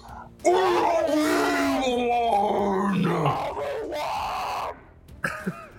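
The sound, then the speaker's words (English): A man lets out a loud, drawn-out, anguished scream close to the mic, mimicking a villain's tormented cry, wavering for several seconds before trailing off into a few shorter strained shouts. “I think we owe it to Darth Vader to change up our weekly Darth Maul Kenobi scream to the version that Vader gave us this episode.”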